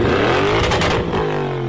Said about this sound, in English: Who is going to be revving their car